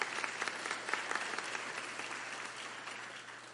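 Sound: audience hand clapping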